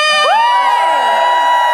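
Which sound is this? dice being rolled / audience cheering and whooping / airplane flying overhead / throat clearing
audience cheering and whooping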